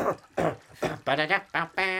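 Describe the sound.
A rapid series of about six short, forceful coughs in a steady rhythm, close and loud; the first few are breathy and harsh, the later ones more voiced and tonal.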